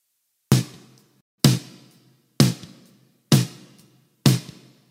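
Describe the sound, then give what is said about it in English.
Five evenly spaced drum hits, each sharp strike followed by a smooth reverb tail that fades before the next one, blending a short and a longer reverb. No voices. “With them together, it sounds like this.”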